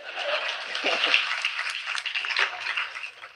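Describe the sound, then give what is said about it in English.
An audience at a talk applauds the statement that integration is necessary, with a dense, steady patter of many hands clapping, holding at a fairly even level for a few seconds before tapering slightly at the end. “Yeah, y'all can definitely clap for that.”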